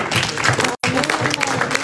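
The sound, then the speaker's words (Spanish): A crowd applauds the Lord loudly and steadily, a dense crackling wash of clapping with voices mixed in, broken by a brief dropout of silence partway through. “Denle la aplauso al”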